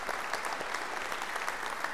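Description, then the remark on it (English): A large group applauds volunteers who carry bins down from the third floor, a dense, loud, continuous wash of many hands clapping at once, with no voices rising above it. “If you're part of that 78 that brings those bins all the way down from the third floor, we have to clap for you.”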